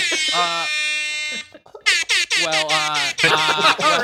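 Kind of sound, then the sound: signal or alarm, quiz buzzer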